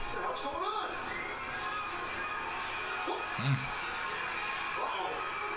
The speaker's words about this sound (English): Drop kick to the face of Melina. Down she goes. Crowd's going ape shit too.